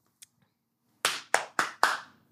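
A faint tap, then four loud, sharp hand claps in quick, slightly uneven succession, each bright and snappy with a short fading tail. No one speaks.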